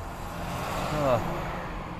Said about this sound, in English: Alright, traffic stops again, is it? Great. Thing with a traffic jam is you get to the front, and never. There's nothing there.